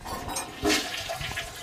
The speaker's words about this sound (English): So see that when you flush it, it goes down here, it goes into the pipes.